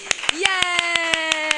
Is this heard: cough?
no